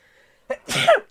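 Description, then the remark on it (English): A single sneeze: a short sharp intake burst followed by a loud, noisy explosive release that trails off quickly, with a faint tonal hum in the quiet lead-in. “Bless you. Excuse me.”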